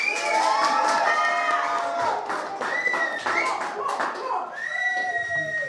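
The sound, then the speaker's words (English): An audience shouts and cheers loudly and continuously for about five seconds as part of a crowd-noise contest, with rising and falling whoops and high-pitched yells, some clapping mixed in, and no pauses. “Audience, you've got 5 seconds to make as much or as little noise as you want.”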